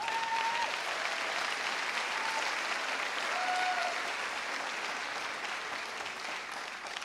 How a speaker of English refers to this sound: Come on, dale. Give that applause to him.